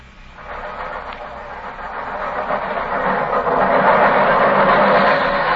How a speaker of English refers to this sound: Holmes, the underground runs right past here, almost on the level of these windows. I could have reached out and touched it.